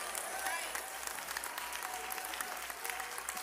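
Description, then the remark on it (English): A church audience claps their hands to the Lord in a dense, steady wash of applause, many overlapping claps blending into a continuous crackle with no pauses across the few seconds. “Clap your hands to the Lord in this house.”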